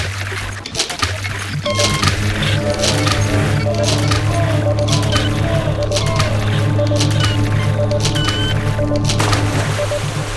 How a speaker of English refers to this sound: So she let me create this bumper that's a pylon of a train whistle, some radio static, an airplane taking off, a chorus, water splashing, all kinds of stuff layered in. So it sounds like...